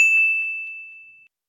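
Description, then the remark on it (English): A single bright bell ding rings out clearly, its pure tone sustaining and slowly fading for over a second before cutting off into silence. “So, Captain K, I heard you ringing bells and doing bit.”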